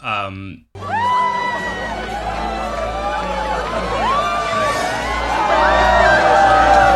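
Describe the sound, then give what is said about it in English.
A crowd in a film scene cheers loudly and steadily as a character dances in a giant pod, with many overlapping whoops and high shouts rising and falling over a dense roar of voices, after a brief low tone at the start. “Of Birdie in her giant pod, and everyone's cheering and she's dancing.”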